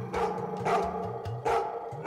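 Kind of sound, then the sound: animal, dog barking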